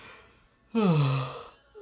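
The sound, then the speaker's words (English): A single drawn-out yawn at about 5 o'clock in the morning, fairly loud, rising abruptly then sliding down in pitch over about a second before trailing off into quiet. “Excuse my yawn, sorry.”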